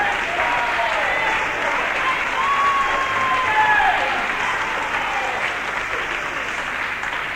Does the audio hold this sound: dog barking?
no